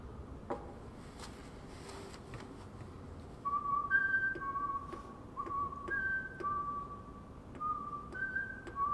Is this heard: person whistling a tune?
yes